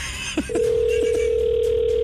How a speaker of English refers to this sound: So this one's ringing in. Hopefully the person who texted answers the phone.